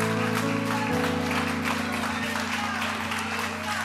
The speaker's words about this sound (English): Y'all clapping like your job is your provider.